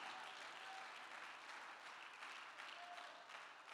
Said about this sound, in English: All right, thank you for the support and the hand clap.